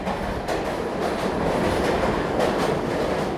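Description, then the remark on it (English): A subway train roars steadily, a dense metallic rumble with a few brief clattering bursts as it screeches and grinds to a halt on a cold morning in 2011, with no voices. “The train screeched to a halt, and James wedged through the door and grabbed a seat.”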